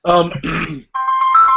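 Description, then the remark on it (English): A voice speaks briefly, then a mobile phone ringtone starts up from a phone in a pocket, playing steady electronic tones at moderate volume that continue to the end. “lots of phone in my pocket ringing.”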